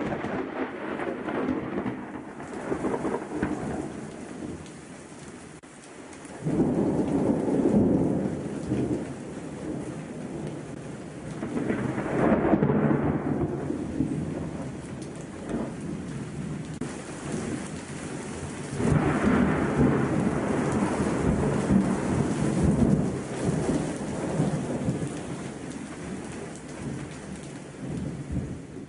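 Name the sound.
thunder rumbling with rain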